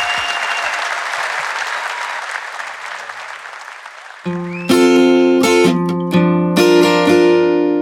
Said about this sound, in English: Big round of applause for Jen Brister, everybody. Thank you so much.